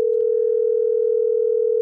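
A phone line's ringing tone, heard as one steady electronic hum held loud for almost two seconds without a break, with no voices.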